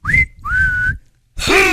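A person whistles a short tune: two sustained, rising notes separated by a brief gap, then after a pause a louder, warbling note. Clear, with no talking.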